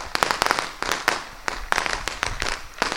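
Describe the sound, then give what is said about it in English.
Fireworks and rockets shot from the gravesites of a hillside cemetery overlooking the ocean on Ikitsuki island go off in a rapid, irregular barrage of sharp bangs and crackling pops, overlapping continuously for the whole stretch at a fairly steady, moderately loud level. “And all over it are rockets and fireworks shooting from the gravesites.”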